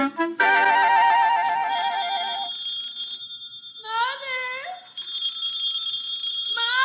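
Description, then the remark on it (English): A phone rings in the middle of the night with a warbling electronic trill and steady high bell-like tones, loud, briefly interrupted by swooping sliding tones before the ringing resumes. “Wake up, your phone's ringing.”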